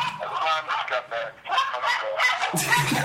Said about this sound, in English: Oh, we got the dogs are attacking.